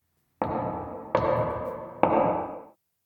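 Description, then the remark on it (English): Three heavy knocks on a massive, imposing, rotting old oak door of a run-down town building, spaced unevenly, each one ringing out with a long, boomy echo before the next rap. No voices. “And you knock and it echoes with three raps.”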